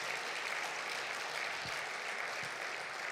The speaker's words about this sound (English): Come on. Just pretend for 1 minute you're a black congregation, all right? And clap again. Come on. Brilliant.